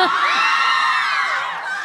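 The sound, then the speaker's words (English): An audience at a movie Q&A with Shailene Woodley and Ansel screams and cheers in a sustained, high-pitched roar, many voices shrieking and whooping together at steady loudness for the full couple of seconds, easing slightly at the end. “Oh, yeah, so we can't talk unless y'all are a little quiet.”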